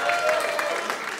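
A brief burst of applause from the audience at a live stage show, many hands clapping in a dense, steady crackle at moderate loudness, with a faint murmur of voices mixed in.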